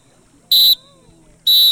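Two loud, shrill lifeguard whistle blasts, each about a quarter second long, separated by a short pause, piercing with no talking; a three-medium-blast signal used when someone has a spinal injury, telling everyone to get out of the pool.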